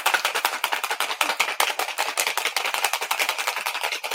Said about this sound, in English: So I'm going to shake it in this martini shaker.